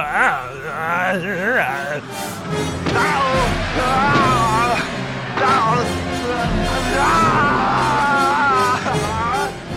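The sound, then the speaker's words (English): Dubbed ADR fight grunts and yells of Arnold Schwarzenegger, guttural with an Austrian, Kermit the Frog-like throat quality, strained and wavering in pitch, come in a continuous loud string, broken by occasional sharp crashes and scuffling thuds with a busy background. “I did try to transcribe the ADR fight sounds that are, you know, laid in the Austrian, like, Kermit the Frog throat kind of thing that he goes.”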